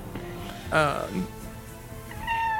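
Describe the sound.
A person mewls like a cat: a loud, wavering meow that slides downward, followed after a pause by a thinner, higher, drawn-out mew. Both are clear against faint background noise.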